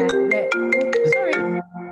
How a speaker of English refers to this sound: Sorry. Sorry, it happened on the last one. My phone went off because it comes from your computer now, doesn't it? Yeah, it's so annoying.